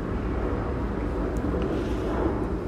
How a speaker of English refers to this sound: And I know there are places like, geez, that airplane's flying low.